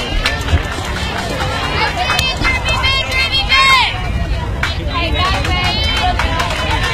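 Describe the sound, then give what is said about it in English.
A dugout crowd at a softball game cheers and chants steadily, with overlapping voices, occasional shouts and claps carrying across an open field, then the cheering briefly pauses. “And so you hear the cheering come to a brief pause.”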